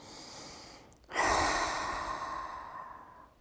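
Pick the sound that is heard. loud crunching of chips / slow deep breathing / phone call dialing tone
slow deep breathing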